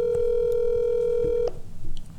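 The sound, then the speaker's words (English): A phone's ringback tone drones steadily for about a second and a half, then cuts off abruptly, leaving faint background room noise with no talking. “He's not gonna answer. Just hang up.”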